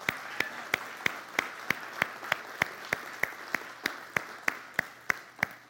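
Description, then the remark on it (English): A church audience claps after a testimony in a steady, unified rhythm, sharp beats landing about three times a second over a bed of scattered applause, with no voices rising above it. “Hallelujah. Clap it out.”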